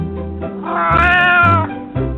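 A hairless Sphynx cat lets out a long, drawn-out meow that rises and wavers, preceded by shorter chirps, loud with no talking over it.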